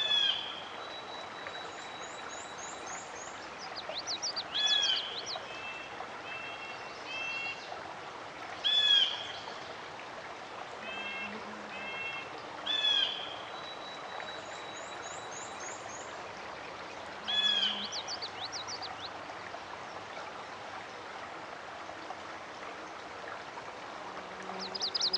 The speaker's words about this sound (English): Here's a new warbler, a chestnut-sided warbler. Listen again for its "please, please, please to meet you" song. Did you hear it?